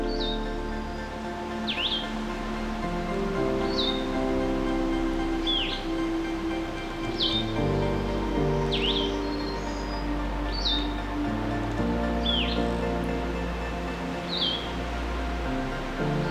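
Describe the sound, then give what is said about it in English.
Blue-headed vireo and warbler songs, including Blackburnian and Magnolia warblers, ring out as short, bright phrases repeated every second or two, fairly clear against a steady, dense background hum of woodland ambience in a nature sanctuary next to Bruce Peninsula National Park, after a morning windstorm. No one speaks. “We'll be listening to the Blackburnian Warbler, Magnolia Warbler, and these blue-headed vireos.”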